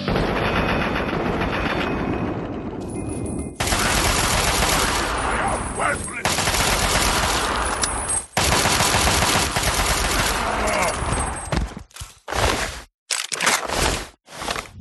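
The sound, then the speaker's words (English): Loud, sustained automatic fire from a Chinese assault rifle rattles in long continuous bursts with brief breaks, then trails off into a few short, choppy volleys at the end. “He had a Chinese assault rifle.”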